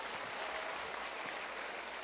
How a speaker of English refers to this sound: Let's clap our hands again to the Lord.